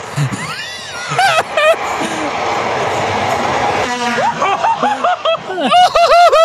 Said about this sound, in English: There's a loud train coming by.